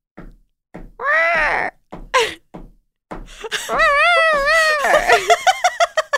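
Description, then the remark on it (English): A person vocally imitates a bird's drumming riff: a few short clicks and brief vocal bursts, then a long wavering, warbling run of sound that ends in quick rhythmic pulses. “And each bird has his own characteristic drum solo riff.”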